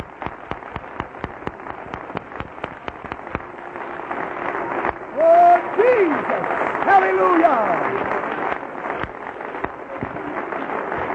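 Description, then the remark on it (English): A crowd at an evening meeting claps hands to the Lord, starting with sharp rhythmic claps that swell into dense, sustained applause, with voices calling out and cheering over it partway through. “Why don't you clap your hands to the Lord one more time here tonight?”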